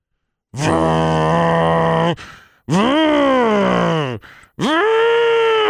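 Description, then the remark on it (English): A voice imitates a neighbor's truck engine revving in the driveway next door, which happens daily for about 10 minutes: three loud, droning vocal bursts, the middle one swooping up then sliding down in pitch, with short gaps between them. “For like 10 minutes, because they just park their, I think it's a truck, in the driveway and just rev it for 10 minutes.”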